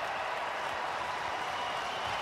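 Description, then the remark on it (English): A large stadium crowd roars steadily as Xavier Worthy of Texas sprints, a dense, unbroken wash of cheering and noise that holds at the same loudness throughout, with no clear voices standing out. “The roar of the crowd.”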